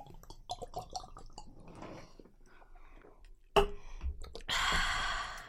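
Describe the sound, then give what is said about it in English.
Wet gulping and swallowing sounds from someone downing a Smirnoff nip of vodka, followed by a sharp click and a long, harsh, breathy exhale at the end. “You know, I couldn't even do the whole thing, but just that guggling noise.”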